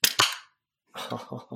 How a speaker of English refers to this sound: I've got a Fort Point Tropical IPA. The best thing about this one, and I saved this, I've been dying to take a sip, but it's in a can, so now you get to listen to it open.